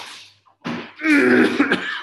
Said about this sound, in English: Sorry, my coughing and sneezing and everything.